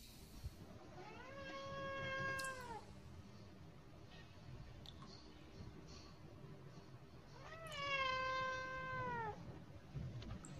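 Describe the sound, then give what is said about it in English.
A cat lets out two long, drawn-out meows, the second several seconds after the first, each a loud wavering wail over a low background hum with no talking. “Is that a cat?”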